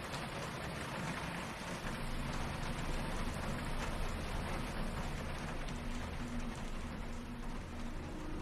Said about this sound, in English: When the only sound is raindrops ricocheting off the sidewalk.